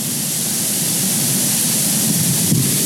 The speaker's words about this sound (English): That is a waterfall. Yeah, so enjoy the sounds for a quick second.